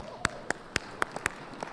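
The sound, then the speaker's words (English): Sparse applause for a choir: about seven sharp, evenly spaced claps in quick succession, fairly quiet and set against a faint background hum, with no talking. “All right, let's give the choir a round of applause.”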